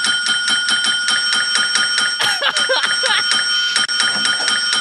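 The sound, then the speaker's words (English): A small hand bell, Hector Salamanca's bell, rings rapidly and continuously for several seconds, loud, its bright metallic tone jangling in a steady, insistent rhythm. “Let me see if I can find Ring Ding to Salamanca rings his bell.”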